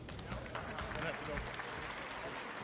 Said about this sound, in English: And then the awkward claps after he says his thing. Everybody's like, wait, what the fuck was that?